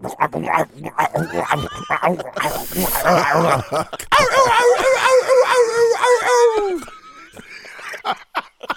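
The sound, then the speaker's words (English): A person vocally imitates coyotes with quick yipping barks, a breathy hissing snarl, then a sustained wavering howl that slides downward before trailing off into a few short sounds. “What do they sound like? They sound like. Which one? Which one? The coyote.”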